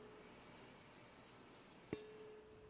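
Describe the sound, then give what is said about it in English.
A single sharp tap on a wine glass during a wine tasting produces a bright ding that rings on clearly for about half a second before fading, set against a quiet, steady background hum. “What was the banging on the glass for? Mostly just because I like the noise. It makes a cool ding.”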